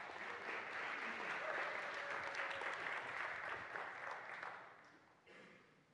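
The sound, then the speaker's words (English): A church audience gives a clap offering: sustained applause, a dense wash of many hands clapping steadily for about five seconds before thinning out and fading near the end. “I think that deserves a clap offering.”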